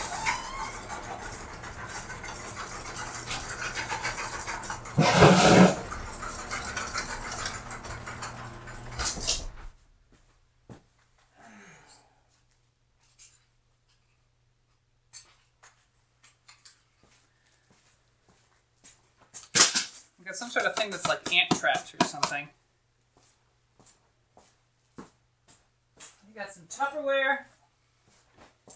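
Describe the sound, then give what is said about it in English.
A heavy blast door scrapes and slams shut with a solid thud, cutting off steady outdoor background noise. Near silence follows before a person begins talking. “Time to close the blast door.”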